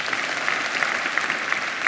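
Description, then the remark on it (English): A crowd applauds steadily, a dense wash of overlapping claps at an even, fairly loud level throughout, with no voices heard. “You can clap if you want to on that.”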